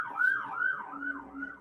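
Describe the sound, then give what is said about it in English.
A fire truck siren wails in quick, repeating rise-and-fall sweeps, about two cycles per second, steady and fairly loud with no voices over it. “There it is. Degamo fire truck.”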